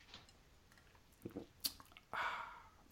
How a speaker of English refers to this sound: I must point out I'm drinking nice aged rum and Pepsi Cherry. Very so nice. I might be a little bit sillier than normal tonight. Anyway, funny. Let me have a sip of that.